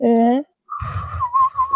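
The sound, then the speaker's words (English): A short voiced hum gives way to a steady, slightly wavering whistle held for about a second, a person's breathy imitation of wind whistling through their ear, moderately loud with airy noise beneath. “The wind is whistling through my ear hole.”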